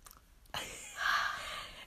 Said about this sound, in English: wait, let me take a sip of my coffee.